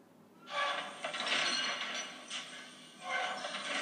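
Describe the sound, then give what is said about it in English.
Heavy mechanical stomping from a Star Wars AT-AT walker, loud hissing, clanking surges that swell, ease and return in uneven steps, with no voices. “Okay, that is the stomp of the AT-AT.”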